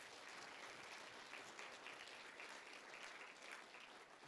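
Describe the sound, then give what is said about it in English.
Steady applause from a large crowd at a church service, honoring girls who had competed; a dense continuous patter of many hands clapping at once, sustained at an even level for several seconds with no voices over it. “So let's give them a round of applause for what they did.”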